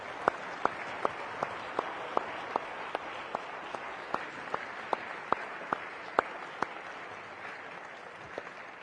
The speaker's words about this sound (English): Will you just give a round of applause for the...